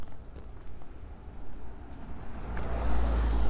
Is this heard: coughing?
no